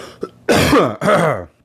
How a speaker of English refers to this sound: Excuse me. I have to cough a little bit here.